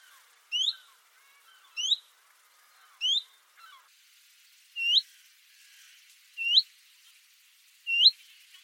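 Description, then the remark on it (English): Willow warbler and chiffchaff calls: six short, clear, upslurred "hweet" notes, three then three of a slightly different shape, evenly spaced about a second and a half apart, with no talking. “For me, the key difference between separating willow warbler calls from chiff-chaff calls is the presence of a letter U.”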